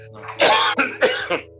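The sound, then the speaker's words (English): A person coughs and clears their throat in a quick cluster of three or four harsh bursts, with a faint steady hum underneath. “Excuse me, I've got a cough now.”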